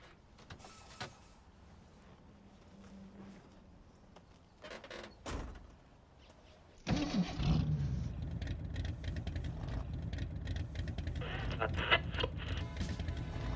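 After some quiet clicks and a door-like thud, a car engine starts up abruptly and settles into a steady, loud rumble that runs to the end.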